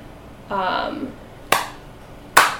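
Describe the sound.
Two sharp, separate hand claps about a second apart, loud and crisp, following a brief voiced sound from a person at the start.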